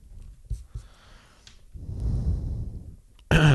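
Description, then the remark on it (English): Heavy, close-miked breathing of a person focusing while drawing: a few short puffs, then one long, noisy exhale rushing into the microphone, followed by a brief voiced sound at the end. “I feel like people are going to complain about how heavy I've been breathing into this microphone.”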